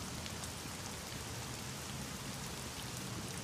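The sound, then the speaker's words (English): Steady rain pattering down in a video game, a dense, even hiss of drops with no pauses, at a moderate level, with no voices. “Was that supposed to be the rain falling on my head?”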